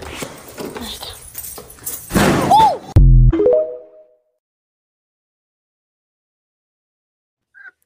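A poodle, heading outside to chase squirrels, runs into a clean glass door with one heavy, dull thud and a brief resonant ring, after scuffling and movement; then silence.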